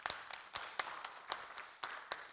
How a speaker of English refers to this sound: I want to report to everybody that we've gone over budget this year, and that's something to celebrate. So yeah, you can clap for that.